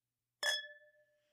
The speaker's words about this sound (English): We got our fancy wine glasses again, because por que no? Oh, because the clinks are just amazing. And we clink.